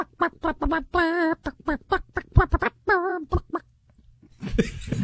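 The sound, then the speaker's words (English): A person vocally imitates a chicken, clucking a song as a rapid, rhythmic melody in short bursts with a couple of longer warbling notes, loud, ending in a breathy noise. “Can I hear … again? No, I'm not doing it. In the style of a chicken?”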